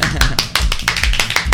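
Brisk hand clapping in a studio during a show's weekly roundup, in a steady, fast rhythm, about a dozen sharp, loud claps in under two seconds, with no voices over it.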